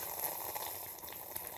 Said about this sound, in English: No, that was you sipping loud. That's what that was.